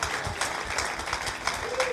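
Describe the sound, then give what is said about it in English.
An audience applauds steadily, a dense wash of many hands clapping that fills the whole stretch at a fairly even, moderate loudness, with some crowd voices mixed in. “Yeah, that's an applause line right there.”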